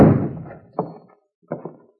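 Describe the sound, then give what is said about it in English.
A heavy door is shoved open with a loud wooden bang, followed by three softer thumps as it swings and settles. No one speaks. “If you want in, just shove the door.”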